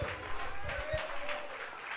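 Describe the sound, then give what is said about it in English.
An audience claps their hands together to Jesus in a steady wash of applause, with a voice sounding over the clapping throughout. “Somebody clap your hands to Jesus together.”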